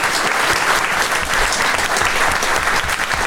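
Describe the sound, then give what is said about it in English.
A crowd at a live show in London applauds steadily, a dense, loud wash of many hands clapping at once that holds an even level throughout without pausing. “Give yourselves a round of applause for coming along.”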